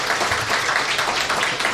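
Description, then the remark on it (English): An audience applauds steadily, a dense patter of many hands clapping at once, fairly loud and sustained throughout with no voices on top. “So let's give Kelsey's a round of applause for supporting us.”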